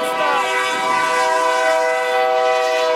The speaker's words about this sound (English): Right, here comes the train. Oh, I don't think he's going to stop.